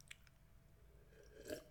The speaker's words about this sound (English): Quick sip of water.